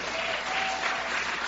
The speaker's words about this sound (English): If you believe it, give Him a hand clap right now. Come on.